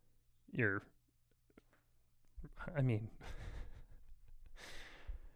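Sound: breathing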